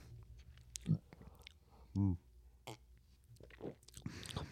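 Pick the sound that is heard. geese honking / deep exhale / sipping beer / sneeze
sipping beer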